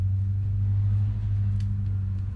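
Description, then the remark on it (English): A heavy truck engine rumbles loudly and steadily as the truck passes by, a deep droning hum that holds at roughly the same level throughout, with no voices. “Okay, that truck is loud.”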